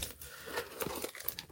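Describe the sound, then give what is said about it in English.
Plastic wrap being torn and peeled off a new phone box (the 16 GB RAM, 512 GB storage version) during an unboxing: a run of short crinkly rips and crackles, fairly quiet, with a louder crunchy tear at the end. “It's got plastic wrap on it, so I'm going to start by seeing if I can get at that.”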